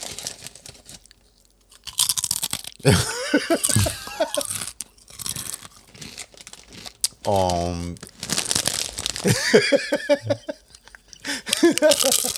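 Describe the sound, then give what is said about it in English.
Loud, crisp crunching and chewing of nacho cheese chips in ASMR style, with bursts of bag crinkling, irregular bites, and a short voiced sound partway through. “That's true, because I have some nacho cheese, and I've heard like these girls or guys are fucking post videos on.”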